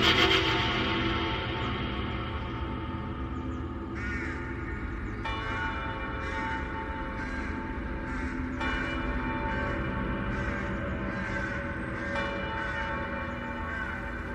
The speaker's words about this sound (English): I stared across the desert at Pleasanton. In the distance, I heard the faint toll of wedding bells ringing out across the sand.